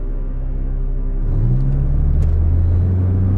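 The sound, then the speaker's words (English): A car engine hums steadily, then its low drone rises in pitch around the midpoint as the vehicle accelerates while being driven toward the ocean, settling into a continuous loud rumble with no voices. “I drove toward the ocean.”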